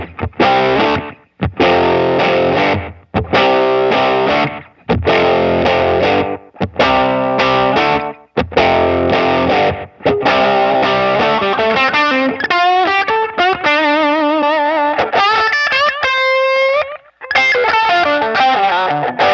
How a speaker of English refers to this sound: I mean, let's hear that thing. Yeah, I mean, that's the classic. I mean, that's my all-time favorite overdrive pedal. Here's no verb. This is just dry, right? Slap on it, because it'll be awesome. No repeats.